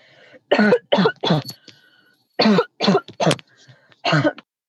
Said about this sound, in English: Dampness is no good at all for your cough.